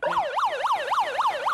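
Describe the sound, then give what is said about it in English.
A loud fire alarm siren, played as a heckle received during a show at the Vic Theater, wails on its own, its tone sweeping rapidly up and down in a steady repeating cycle, roughly three times a second. “Someone just pulled the fire alarm to get me off stage.”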